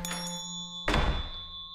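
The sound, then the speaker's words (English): An office door bursts open as someone rushes past and barrels through it, with one heavy, booming thud that briefly swells and fades, set against a steady background hum with faint high ringing tones. “Balthus sat in his office, watching the nearby window, until Ian rushed past and barreled through the door.”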